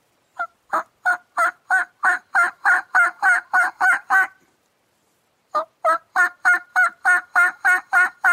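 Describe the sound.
Turkey hen purring calls made on a diaphragm call: two runs of quick, evenly spaced notes, fairly loud, with a short pause between them and no talking.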